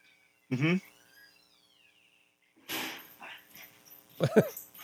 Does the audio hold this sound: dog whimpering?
yes